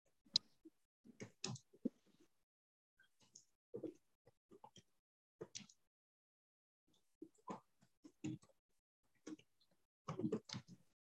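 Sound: typing on a keyboard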